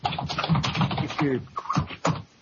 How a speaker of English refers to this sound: Who's typing that loud? That's crazy. That's louder than me. That is louder than I am.